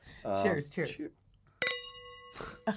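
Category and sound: household object, wine glasses clinking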